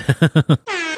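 signal or alarm, air horn blast

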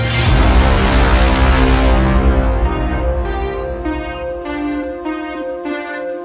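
signal or alarm, bell ringing

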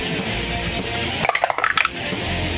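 household object, dice being rolled

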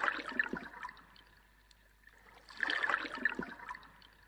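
household object, toilet flushing water

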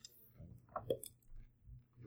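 household object, dice being rolled

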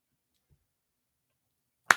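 human body sound, hand clapping

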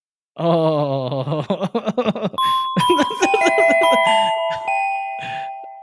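signal or alarm, doorbell chime sound effect

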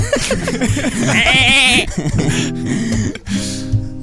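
animal, goat bleating

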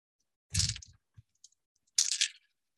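household object, dice being rolled

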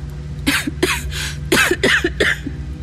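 human body sound, coughing

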